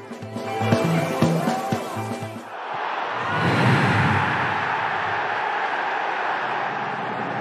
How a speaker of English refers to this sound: Ellis James's generic crowd sound guy. They can't get rid of him. Still there.